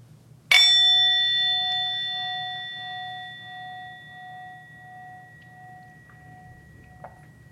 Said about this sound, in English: And when you're ready, you can listen for the fading sound of the bell to invite you to gently open your eyes again.